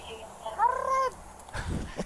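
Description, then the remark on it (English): A woman's short, rolling R trill of about half a second, shrill and warbling like a parrot's call, clear, followed by a burst of low rumbling noise. “It sounds like a parrot.”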